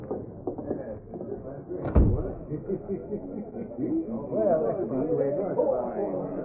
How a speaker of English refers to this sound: This looks like an office. It is an office. Jack Hammer's office. Step inside, I'll shut the door.